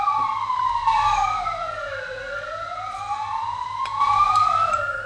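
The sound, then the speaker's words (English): A police car siren wails, its overlapping tones sweeping slowly up and down in pitch over a low, steady engine rumble, growing slightly louder toward the end. No one speaks. “As the police arrive, take us away.”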